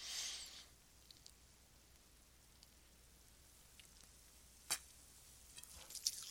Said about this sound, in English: Alright, let me take a quick sip of my drink.